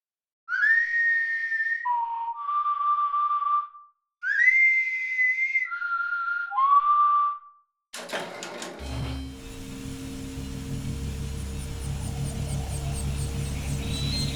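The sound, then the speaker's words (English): Two short whistled phrases of sliding, falling notes sound clearly with a brief pause between them, then give way to a loud, steady mechanical grinding and rumbling noise. “Say, how well can we whistle?”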